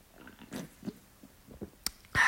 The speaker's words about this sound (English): I'm just going to take a sip of my Zevia.